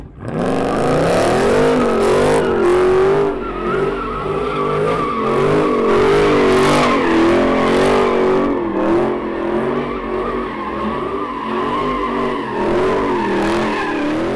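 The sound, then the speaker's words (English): A car engine revs hard while its tires screech continuously as it spins about eight tight donuts in a parking lot for about 40 seconds, a crowd gathered in a circle around it; loud, the pitch rising and falling with each circle, with no one talking. “About 40 seconds, Dennis spun in circles, his rear bumper at times nearly brushing against the crowd. He spun about 8 donuts.”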